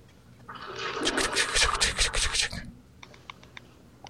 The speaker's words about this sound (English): Is he in a real shower? Is this prison? Yeah. Oh, no. This is in the penthouse.